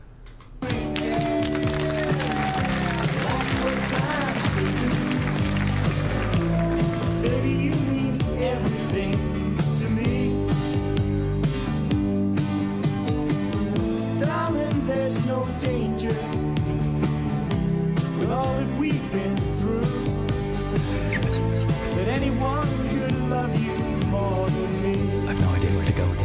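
A pop song plays steadily at a full, even volume, with a sung vocal melody over a dense band backing of sustained chords and bass, continuing without a break.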